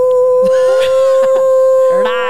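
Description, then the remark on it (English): A person imitates a wolf howl, holding one long, steady, loud note, with a few brief vocal bursts and a rising, wavering bit near the end. “Oh, wolf, yes, yeah. You're a wolf.”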